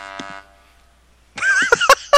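A short steady buzzing tone, a brief pause, then a loud, harsh, wavering moo-like bellow broken by sharp rasping bursts, a sound effect of an angry cow in the middle of a field, all without talk.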